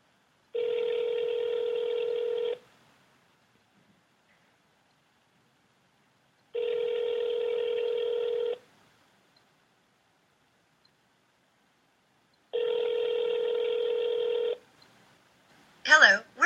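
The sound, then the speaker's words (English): An outgoing phone call to a website's owners rings three times, each long electronic ring lasting about two seconds with even silent gaps between, before a recorded answering message starts speaking at the very end. “the owners of the website and gave them a call.”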